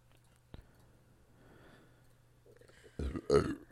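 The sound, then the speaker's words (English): A loud burp erupts after a quiet stretch, a low rumbling belch with a second gulping push right behind it, preceded by faint background rustle and a soft click. “I'm just burping.”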